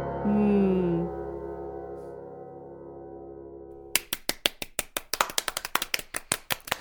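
A sustained tonal chord rings out and slowly fades, then sharp hand clapping breaks in: a quick, slightly uneven run of crisp claps lasting about three seconds.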